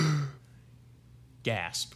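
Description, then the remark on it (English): A short, breathy voiced gasp near the end, a mock intake of surprise made by a voice. It follows a brief vocal sound at the start and near-silence between. “Gasp.”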